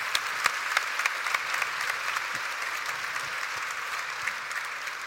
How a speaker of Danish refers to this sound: Tak. Ja, klapper vi af